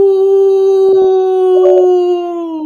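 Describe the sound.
A person lets out one long, loud wolf-like howl, a steady sustained tone that sags slightly in pitch near the end, with a couple of faint clicks partway through.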